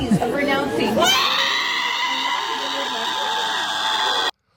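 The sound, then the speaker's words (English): A crowd of people gathered in a semicircle around a woman in a parking lot cry and scream together in loud, overlapping wails that rise and hold for several seconds, intense, before cutting off abruptly. “the people who are crying and screaming, that's like a crowd kind of gathered in a semicircle around her in a parking lot”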